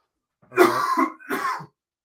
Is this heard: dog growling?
no